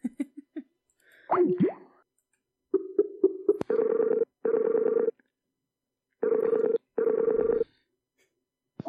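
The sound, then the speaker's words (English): A call ringing tone repeats in steady paired bursts, clear and fairly loud, preceded by a few short electronic blips and a warbling connection sound, as a dropped call is being reconnected. No one speaks. “All right, we're going to try to reconnect to them.”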